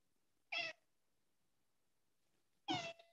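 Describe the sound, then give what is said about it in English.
An old cat meows twice, each call short and harmonic, separated by about two seconds of near silence; the second meow is slightly longer and trails off. No talking is present. “Do you have a new kitten over there? Nope, I have an old cat”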